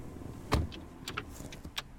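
A police squad car door shuts with a solid thud, followed by a few light clicks and rustles of people settling into the seats. No one speaks.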